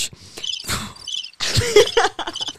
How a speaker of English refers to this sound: The audience, crickets.